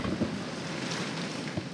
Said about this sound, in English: Listen to that. That is some Chicago rain here. That is some Windy City precipitation.